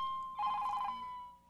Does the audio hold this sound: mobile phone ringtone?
yes